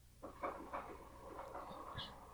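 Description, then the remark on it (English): A door stopper, the part that keeps a door from opening all the way, rattles in a quick series of light metallic taps, a bit like a ball bearing bouncing on a hard floor, with a few brief ringing tones over a steady background hum. “Yeah, it sounded like a ball bearing bouncing on the floor.”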